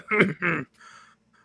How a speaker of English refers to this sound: There's a slight pause, and then there's almost like a different voice takes over, darker, more unhealthy voice. There's a large cough.